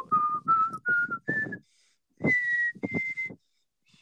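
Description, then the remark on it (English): A person whistles a short tune of clear, steady notes, starting with quick repeated pitches, then a pause and two longer held tones. It sounds fairly loud, with no talking. “That was you actually whistling? Yes.”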